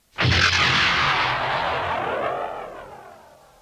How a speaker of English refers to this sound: The smaller robot flipped a series of switches, and with the thunder of explosive latches, the life pod ejected from the crippled fighter.